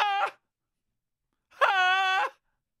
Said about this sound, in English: Anyway, during copulation and throughout the two-week mating season for foxes, vixens give off a human-like, high-pitched vocalization called scream.